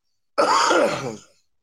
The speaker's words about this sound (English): Do you edit out my coughing? No, but I gotta start because people were complaining about it. Who? One of the Patreons. He said we needed a cough button for you.